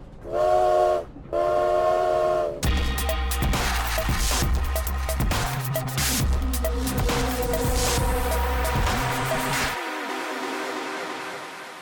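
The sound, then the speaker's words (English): Two long, loud train whistle blasts ring out, then a busy rumble of a train with rhythmic clanking and hissing fills the scene before dropping away to a quieter hum, as passengers disembark from the train in Moscow. “They're disembarking off the train in Moscow.”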